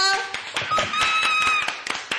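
Audience applause welcoming a guest on the show Black Educated and Broke: a steady patter of hand claps lasting a couple of seconds, with a high, drawn-out whoop or cheer rising above the clapping.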